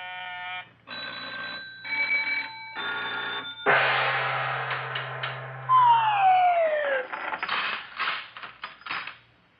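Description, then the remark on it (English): A push-button mechanical money box opens when its button is pushed, with a flurry of sounds: bursts of electric bell ringing, a low steady hum, and a descending whistle-like tone, ending in a clattering jumble of rings. “I'll open up my push-button money box.”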